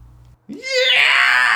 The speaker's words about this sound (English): Yeah! And that was today's Daily Cathartic Scream.